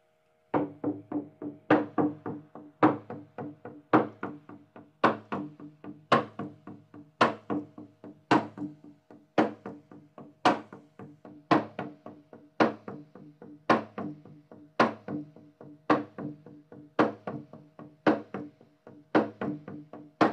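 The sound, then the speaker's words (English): A Native American hand drum beats a steady heartbeat rhythm, each strong boom followed by a softer echoing stroke, repeating evenly for about twenty seconds with no voices. “I got out my Native American drum and I started playing that heartbeat sound.”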